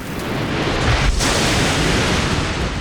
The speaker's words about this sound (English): There was a massive flash as the lightning bolt struck.